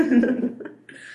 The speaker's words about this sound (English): Are you okay there? Just dying. Just clutching your boobies. I always do that when I cough for some reason.